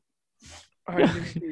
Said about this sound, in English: It's just … sneezing in the background.